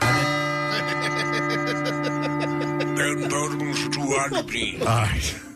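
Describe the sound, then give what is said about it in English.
A bell rings with a steady, sustained metallic tone and a rapid pulsing beat, lingering for several seconds while people begin talking over it toward the end. “I want that bell every time I make a mistake.”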